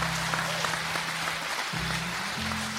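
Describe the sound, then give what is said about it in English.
An audience at a live show claps steadily for guests Sinead O'Carroll, US Murph, Richie Sadler and Oisin McConville, a dense crackling wash of applause over a low sustained musical drone that shifts pitch a couple of times. “Round of applause, please, for Sinead O'Carroll, US Murph, Richie Sadler, and Oisin McConville.”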